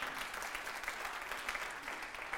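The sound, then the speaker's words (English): An audience at a Shepherd's Gate church service claps together to celebrate God in a steady, dense wash of applause, many hands overlapping with no pauses and no voices standing out. “So now if you're new to go ahead, you can clap.”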